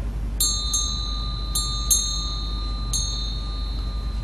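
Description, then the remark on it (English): A bright metallic bell is struck five times at irregular intervals to call monks to evening chanting, each strike ringing with a shimmering high tone that lingers and overlaps the next, over a low steady background rumble. “And then they rang the bell.”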